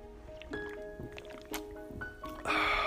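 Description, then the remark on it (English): Someone sips a fizzy highball, a whiskey soda: a few soft wet slurps and gulps at roughly one-second intervals, ending in a louder burst of carbonated hiss. No one speaks. “Sorry, I'm going to take a sip of my highball, which is my favorite drink when I'm in Japan.”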